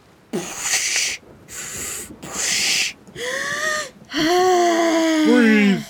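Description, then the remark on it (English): Someone imitates robotic breathing: three loud, hissing breath bursts, then two longer, strained exhales with a warbling, mechanical-sounding tone, with no other sounds. “Breathe through circuitry. Simulating breathing.”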